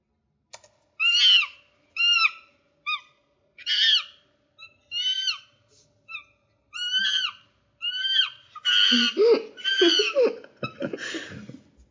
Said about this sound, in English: One hour of monkey sound. Guys, if you're in need of a 1 hour monkey sound video on YouTube, you can search it. Just look up 1 hour of monkey sounds.